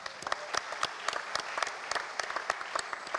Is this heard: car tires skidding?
no